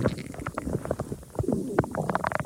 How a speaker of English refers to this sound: That is really my stomach, people. Isn't that weird? Here, let's put that mic closer.